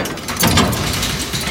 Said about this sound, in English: Then with a loud, thunderous rumbling, the door rolls open.